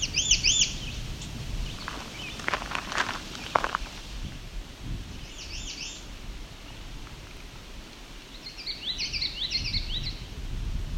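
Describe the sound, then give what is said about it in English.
High, thin birdsongs ring out in short bursts: an American redstart and a common yellowthroat singing, with footsteps crunching through leaves and a low outdoor rumble underneath. “common yellow throat and an American red start.”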